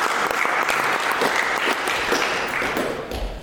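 A crowd applauds steadily, a dense crackle of many hands clapping at even loudness before tapering slightly at the end. The audience at the Third Coast Trombone Retreat is applauding the mock audition winner.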